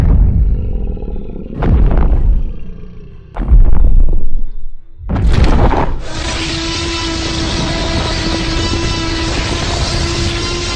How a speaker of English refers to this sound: Louder than I thought she would be. That roar would blow my hair back if I had any.